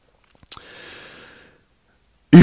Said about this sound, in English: Well, I'm finishing my breathing, but do not interrupt my breathing again.